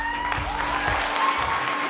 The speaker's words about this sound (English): And the audience loved it. They cheered and clapped and gave the show a standing ovation. They were giving them a round of applause because all the clothes and their hair was really good.